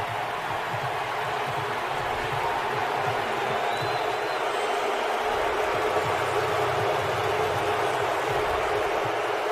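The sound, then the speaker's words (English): A huge stadium crowd booing loudly at Russell Wilson as he takes the field, a steady, roaring wall of sustained low jeers that fills the space without letting up, heard from within the stands. “and everybody in the crowd wasn't just booing. They were screaming boos at Russell Wilson, and then you'll hear Peyton and Eli comment on it.”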